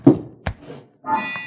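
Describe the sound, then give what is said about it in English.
A heavy door to a sub-cellar opens: a dull thud and a sharp clunk of the latch, a short pause, then a drawn-out, squealing creak of hinges. “Open the door”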